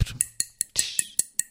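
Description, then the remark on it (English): Someone taps a drinking glass about eight times in a quick, steady rhythm, each tap giving a short, high, bright ring. No voices are heard. “I think you need to have something metal to hit against the glass, but don't do it because you might break it and then the water will go on your computer.”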